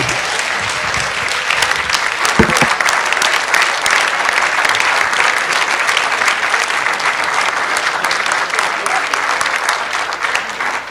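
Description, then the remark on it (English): Sustained audience applause for Aung San Suu Kyi at a meeting, a dense, steady wash of many hands clapping at an even loudness for about eleven seconds, with no voices standing out above it. “You decide whether you want to applaud or not.”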